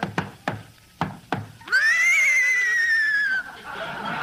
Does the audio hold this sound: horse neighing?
yes